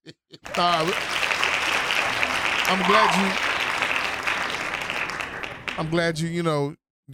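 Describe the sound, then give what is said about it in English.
Sustained applause from a group of hands clapping for about five seconds, with voices calling out over it near the start, middle and end. “And claps.”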